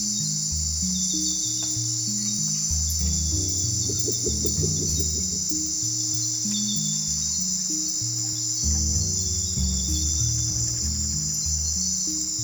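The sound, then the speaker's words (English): A dense, unbroken high-pitched drone of night insects fills the air at a small lagoon in the Amazon, while low, stepping tonal calls and pulses churn steadily underneath. No one speaks. “We found a lovely spot, a sweet little lagoon, and decided to take turns getting up every hour throughout the night and record a few minutes.”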